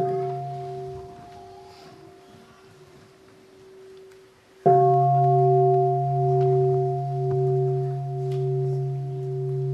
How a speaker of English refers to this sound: Before we ask a question, we breathe in and out together with the sound of the bell.